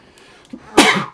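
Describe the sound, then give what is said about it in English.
A single loud sneeze: a short breathy intake followed by a sharp burst of noise that quickly fades. No talking. “I'm going to sneeze.”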